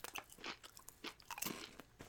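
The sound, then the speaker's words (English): Someone crunches jalapeño y especias tortilla chips in a quick, irregular string of crisp, crackly bites, each a brief bright burst of snapping texture, with no talking over it. “I like both of these chips a lot.”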